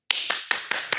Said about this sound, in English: You know you don't. You get your own claps. Like, I'm not waiting on y'all to clap for facts.